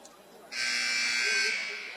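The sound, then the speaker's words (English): A loud, harsh buzzer at a basketball game between the Patriots and the Model Towners sounds for the second time, blaring steadily for about a second and cutting in sharply over a low background of crowd noise before fading slightly at the end. “The second buzzer has sounded”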